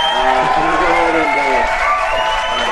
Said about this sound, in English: UFC 152. Where we are. They need the ring back. We're here. You can hear the crowd.